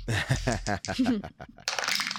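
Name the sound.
dice being rolled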